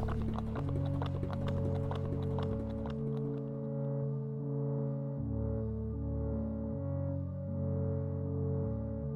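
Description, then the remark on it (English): Rapid galloping hoofbeats of horses on a race track pound for a few seconds over a loud, steady musical drone, then drop away while the sustained tones continue alone. “It was horses going kind of in the Kentucky Derby, like you're right on the track.”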